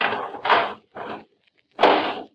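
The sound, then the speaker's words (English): A metal garbage can lid scrapes and clanks into place in three rough bursts, the last one the loudest, with short silences between, as the lid is put on over someone hiding inside the garbage can. “Okay, put the lid on.”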